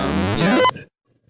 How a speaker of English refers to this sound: That was meant to apparently be like a thumbs up. It just sounded like a fart. Sorry, I apologize for that.